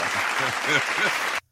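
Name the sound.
round of applause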